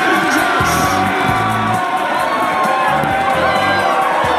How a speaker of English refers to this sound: Well, yes, ladies and gentlemen, some sporting history here in Australia has been created at the Swamp in Townsville. But the people all cheering are from the Wollongong Hawks. After joining the league in 1979, they are now the new NBL champions.